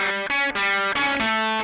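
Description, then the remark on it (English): A distorted electric guitar with a bit of drive and no pedals plays sustained, buzzy notes whose pitch sags and wobbles between phrases as a tape echo from a manipulated two-track tape machine warps the tone, loud with no voices. “Well, a bit of drive, but then the tape echo, which pitches and warps right. the tone.”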